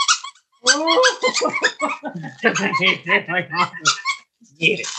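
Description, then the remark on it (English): A dog, Hank, whimpers and yips in high, squeaky bursts over a toy he has been given, mixed with excited barks and the toy's squeaks, with a person's voice talking over parts of it. “He's going to chew on that for the rest of the show.”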